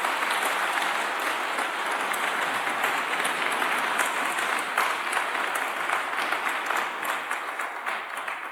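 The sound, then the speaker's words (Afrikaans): Sustained applause from a large group at a baptism, given to the Lord: dense overlapping hand claps filling the space steadily for several seconds before tapering slightly at the end. “Kom ons gee die Here 'n lekker hande klap.”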